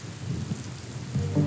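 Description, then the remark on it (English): Steady rain pours down in a continuous wash of hiss, with a deep, rolling rumble of thunder underneath that swells louder toward the end. No voices. “They sailed on the vast ocean for many months as rain kept falling.”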